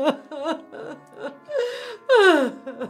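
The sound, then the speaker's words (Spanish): A voice acts out a big sob as someone sets scissors down on a table: several short, shaky, gasping whimpers build to one loud, drawn-out wailing cry that falls in pitch near the end. No words are spoken. “Puso las tijeras en la mesa y dejó escapar un gran sollozo.”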